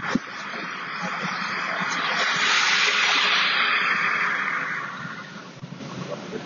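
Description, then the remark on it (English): Steady city traffic rushes past on both sides at 56th Street and Madison on a clear late-spring day, a broad whooshing roar that swells to a peak midway and then eases off, with faint rumbling engines underneath and no talking. “Traffic is traveling around me on both sides here. I'll give you a little listen to that.”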